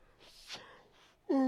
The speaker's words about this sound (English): Oh, I'm yawning because I'm tired.